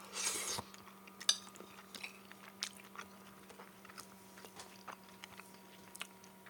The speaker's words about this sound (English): Gosh, I hope you can hear me chewing because I'm leaving a lot of dead air.